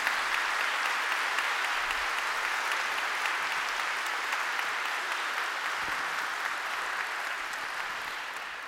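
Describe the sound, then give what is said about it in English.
A church audience applauds the Chancel Choir. Many hands clap steadily in a dense wash at an even level for several seconds, tapering slightly toward the end. “We're not sure if you should applaud or not.”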